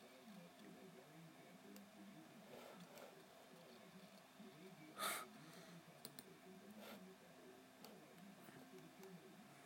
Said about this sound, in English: Yeah, sorry for all the constant clicking here. Or not constant, but consistent.